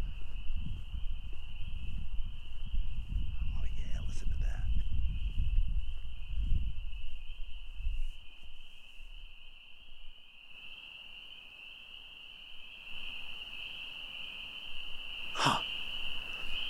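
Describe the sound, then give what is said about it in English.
A dense, unbroken chorus of spring peeper frogs calling for females' attention on an evening, peeping at a steady high pitch throughout, with low rumbling noise early on and a single sharp knock near the end. “This is basically like going to a frog bar, is how I think of it. They're all clamoring for the ladies' attention.”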